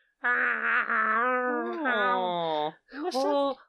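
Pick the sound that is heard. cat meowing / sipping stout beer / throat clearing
cat meowing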